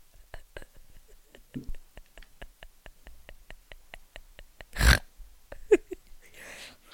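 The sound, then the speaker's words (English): A person makes a loud, nasal pig-like snort near the middle, with a few softer grunting snorts after it, over a steady run of faint rhythmic clicks and quiet whispery breaths. “Oh, stop snorting, you pig.”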